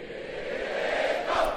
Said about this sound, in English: Crowd is hostile.